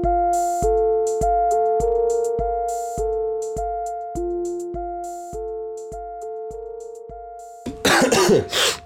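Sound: cough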